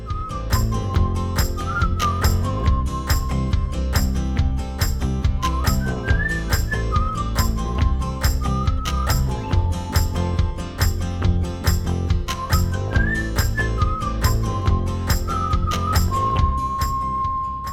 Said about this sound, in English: Bruh, we caught you whistling. Again. End of last episode, you hit that off-key note.